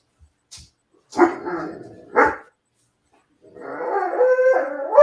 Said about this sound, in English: The dog loves it. Is that your dog?